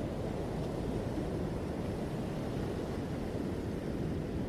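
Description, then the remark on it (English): Gentle ocean waves wash steadily over sand in a continuous, soft roar with no distinct breaks or crashes, heard alone without any voices. “The rhythm of the calm waves flow over the sand and it relaxes you.”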